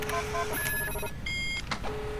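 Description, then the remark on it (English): An electronic alarm rings with steady, high-pitched tones that shift between pitches in short stretches, sounding over a constant background hum with no voices. “That damnable alarm is giving me a frightful headache.”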